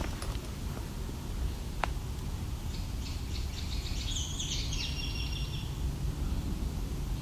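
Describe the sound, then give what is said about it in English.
A Baltimore oriole sings a short series of clear, whistled notes midway through, fairly faint over a steady low rumble, with one sharp click just before. “That's the Baltimore Oriole.”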